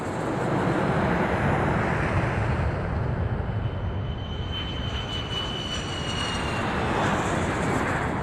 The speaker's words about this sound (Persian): هواپیمای از روی باند بلند میشود.